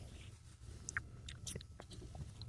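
A man crunches and chews an apple, wet crunching with repeated crisp bites and mouth sounds over a low steady hum, no talking.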